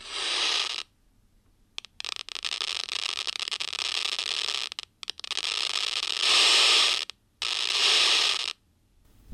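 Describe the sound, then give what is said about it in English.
Seizure-like activity from cultured neurons in electrode array dishes kept in an incubator, recorded and played through a loudspeaker, comes through as loud bursts of crackling static, about four surges broken by brief silent gaps and scattered pops, with no voices. “And this is what it sounds like when you take those recordings and hook them up to a loudspeaker.”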